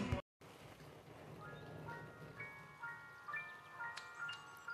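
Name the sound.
rain falling outside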